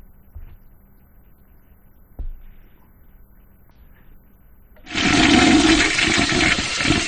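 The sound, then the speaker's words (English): A toilet flushes loudly, a sudden rushing gush of water that starts after a few seconds of near silence and keeps roaring steadily to the end, with a couple of faint knocks beforehand. “We gonna flush that.”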